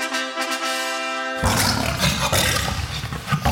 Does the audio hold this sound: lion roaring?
yes